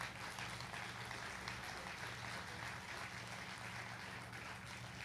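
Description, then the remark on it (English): A crowd at a ceremony honoring first responders applauds the man who will play taps, a dense, continuous wash of clapping hands that holds at an even level from start to finish, with no voices standing out. “Let's give Reggie a round of applause.”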